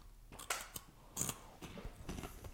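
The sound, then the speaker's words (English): Someone crunches a hot Cheeto: a handful of crisp, sharp bites and crackly chews come in an uneven rhythm over a quiet background, with no talking. “Nice crunch.”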